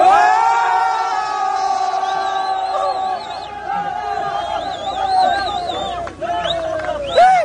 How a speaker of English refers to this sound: This is in a cobalt mine in the Congo. They had a little cave-in, you know. Apparently a pretty common occurrence down there because I found dozens of videos. Check this out. They cheer every time they rescue someone that the earth collapsed on.